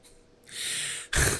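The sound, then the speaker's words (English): A long, hissing intake of breath ends in one abrupt, forceful cough, loud, as a person coughs out the chewing piece from a water bottle. No one speaks. “Did you just cough out your freaking gum?”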